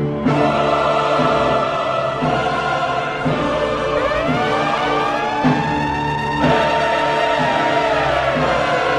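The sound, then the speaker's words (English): A loud, continuous crowd screaming and cheering at a Fire Fridays night, dense and steady throughout, with rising and falling siren-like tones sweeping over the noise in the middle. “All my ladies who know you look good, scream, make some noise from early.”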